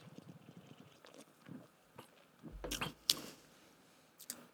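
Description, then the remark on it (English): Wet slurps of someone sipping a double IPA beer from a can: a quiet stretch, then a couple of short, louder liquid sucking bursts at the mouth, followed by a faint swallow-like sound. “Way, let's take a little sip-a-rooney.”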